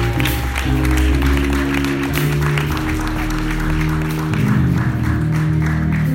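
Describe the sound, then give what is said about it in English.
A church audience applauds God during a service with dense, continuous clapping, layered over sustained low keyboard or organ chords that keep playing throughout. “Come on, give God a hand.”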